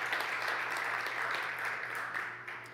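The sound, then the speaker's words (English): Steady audience applause for the worship team, a dense wash of many hands clapping that holds even for a couple of seconds before beginning to thin out, with a low electrical hum underneath. “Can we clap it up for the worship team, please?”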